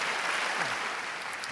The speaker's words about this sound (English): Let's give God all the glory. If you believe that, give a loud hand clap.